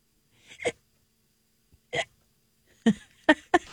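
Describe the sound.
Someone imitates hiccups with their voice: five short, sharp yelps, spaced irregularly with pauses between, the last three coming in quicker succession.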